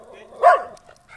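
A single sharp dog bark rings out close by, loud and brief, over a faint steady background hum.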